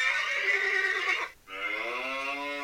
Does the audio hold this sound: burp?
no